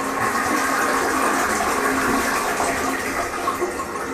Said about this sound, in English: Tammy gets to follow the flush.